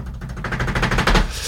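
A rapid drum roll announcing the first-place winner of a competition, a dense stream of quick rattling beats with a heavy low thump underneath, steady and loud for about a second and a half, swelling slightly toward the end.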